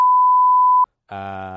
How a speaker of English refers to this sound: I'm going to have to beep that out, because we're not supposed to say what the beer is.